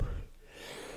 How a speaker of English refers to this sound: Bless you. Hey. Bless you. Bless you.